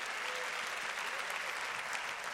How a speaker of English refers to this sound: Come on, clap your hands and give praise to God.